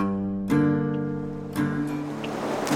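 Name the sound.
flowing river water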